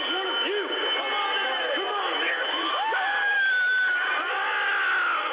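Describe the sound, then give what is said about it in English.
A large mob of rioters shouts and cheers continuously as they flood in through a door held open, many voices overlapping in loud whoops and yells, with a sustained high-pitched tone cutting through the din near the middle. “keeps that door open for the mob to flood in.”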